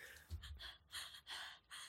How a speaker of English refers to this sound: Who else is breathing in here?